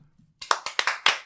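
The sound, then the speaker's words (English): Five sharp hand claps in quick, slightly uneven succession, fairly loud and bright, following a brief faint murmur at the start. “I was gonna clap on my own.”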